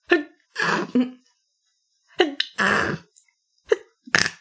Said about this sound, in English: I sneezed and you sniffed. Your sneezes are so precious.